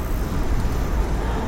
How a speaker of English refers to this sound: I guess I can cross because there's a bus completely blocking 7th Avenue here.